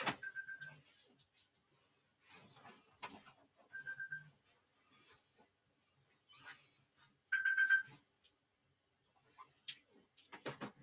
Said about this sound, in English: I'm sorry, my alarm is going off.